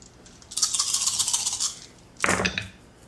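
Dice rattle steadily in a cup or hand for about a second, then after a brief pause tumble out with a short, fuller clatter across a hard surface, rolled for an athletics check in a tabletop role-playing game. No one speaks.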